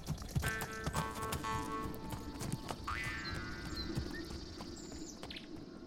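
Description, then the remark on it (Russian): Horse hooves clip-clop steadily in a quick, even rhythm, with birds chirping faintly in the background and no voices. “Богатырь выломил у него два клыка, повьючил их на коня и поехал в свою родную долину.”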